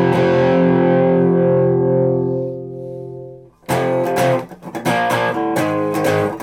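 A grungy, overdriven electric guitar chord, played with the tone rolled back, rings out and slowly fades, then loud, gritty distorted chords are strummed in a choppy rhythm, with no one talking.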